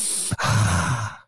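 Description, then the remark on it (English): A person imitates sniffing a girl's hair with a short catch, then one long, loud, drawn-out inhale through the nose, with no talking. “Just let me get a sniff.”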